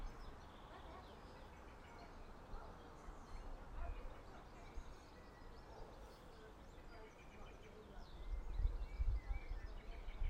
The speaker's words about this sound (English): The birds are slowly starting to roost. Because it is... Well, the sun's up still, but... It's getting a bit cooler now.